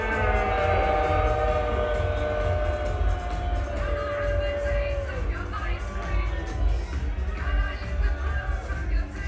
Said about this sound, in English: Everybody, please give a loud, hearty boo to David Sampson.